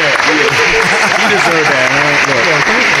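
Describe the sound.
A group claps steadily in a dense, continuous wash of applause, while a couple of voices talk and call out over the clapping throughout.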